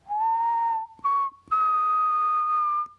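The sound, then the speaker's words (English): A little whistle, whistled by a person: three clear notes, a gently rising first tone, a short middle one, then a long steady higher tone, with no talking. “And the noise was like a little whistle, and it went...”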